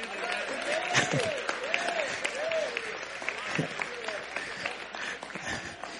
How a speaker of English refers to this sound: Y'all clap.